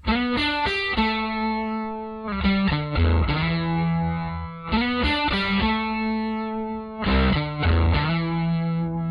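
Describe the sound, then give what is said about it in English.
An electric guitar through an amp with the boost at mid-level, the first preamp gain stage off and the tone stack on, plays a loud riff of mildly crunchy chords and single notes, repeating the phrase twice with sustained ringing tones and no voices. “First, let's hear the boost at mid-level with the first gain stage off and the tone stack on.”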